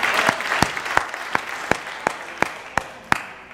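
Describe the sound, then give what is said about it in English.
A church audience gives the Lord a hand clap of praise as they are seated: dense, steady hand clapping, punctuated by a sharp, loud clap that lands at an even beat roughly three times per second throughout. “Can we just give the Lord a hand clap of praise one more time as you're seated?”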